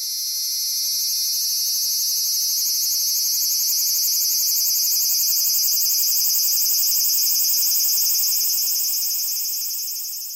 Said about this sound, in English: So first I'm going to play the Havana syndrome recording, and then I'm going to play you a recording from freesounds.org of a close-up recording of a Japanese cicada.